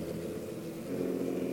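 The engines of 23 race cars, just fired up before the start of a race, idle and rumble together at a steady, loud level, a dense mechanical drone with a slight rise in intensity toward the end.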